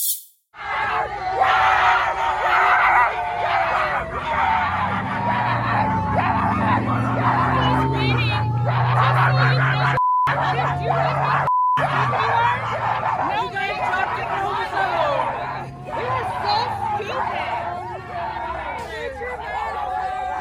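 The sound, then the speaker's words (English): At a pro-Trump rally, a loud crowd of people bark like dogs, a dense stream of short overlapping barks and yelps over constant chatter and hubbub, going on without a break for the whole stretch. “Yes, they were barking like dogs, just so you're not confused.”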